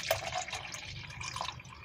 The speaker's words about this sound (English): Drinking on some green tea. Turkey Hill. Matter of fact, let me pour some more.